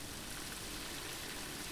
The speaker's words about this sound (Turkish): Yağmur yağsın diye diledim. Yağmur yağmaya başladı.